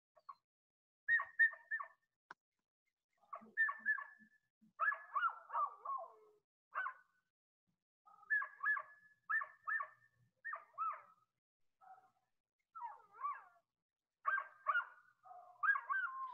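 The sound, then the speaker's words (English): A dog, played back on a recording while it stares at something, barks in quick, high-pitched bursts, several irregular clusters of short yips separated by brief pauses, fairly faint, with no one speaking. “Let's run the tape. Here is your dog, and it's staring at something.”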